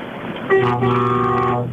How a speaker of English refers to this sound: You're in a truck, I'm guessing, or you've got a fat car. I am. Is your horn one of those ones where you have to pull a little chain by your ear? No, that's the old-fashioned one. It's on the bottom.